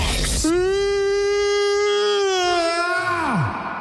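A single long, loud vocal yawn taken with a stretch: a breathy gasp opens it, then a steady drawn-out voiced tone holds for nearly three seconds before sliding downward in pitch and trailing off.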